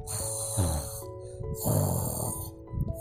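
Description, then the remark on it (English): A voice imitates snoring with two drawn-out, rumbling breaths, each a loud nasal snort followed by a softer exhale, clear with no talking. “He started to snore.”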